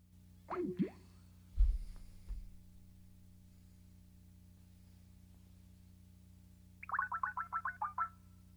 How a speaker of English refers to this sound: the call dropped as the audience heard, and it was right as we were discussing